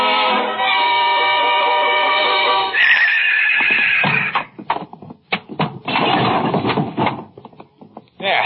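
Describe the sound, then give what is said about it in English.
A wild yearling filly whinnies loudly and at length inside a barn, a long quavering neigh, followed by snorts and shuffling sounds with some muffled knocking as the animal moves about. “She's inside the barn. Just listen to her.”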